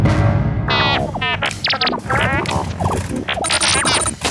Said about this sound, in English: What did the computer say? Sounded like boop, beep, boop, boop, woo.